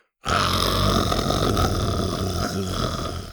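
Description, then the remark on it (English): A single long, rough growl rumbles loudly for about three seconds, voiced by a person imitating a little pachycephalosaurus dinosaur that lowers its head and growls at a girl, with a gravelly, throaty texture that barely fades at the end. “The little dinosaur instinctively lowered its head and growled at the girl.”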